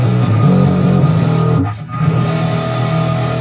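A fuzzy, heavily distorted electric guitar, played through its own built-in distortion, rings out with buzzy sustained chords, a brief dip midway before the harsh, gritty tone resumes, played loud with no talking.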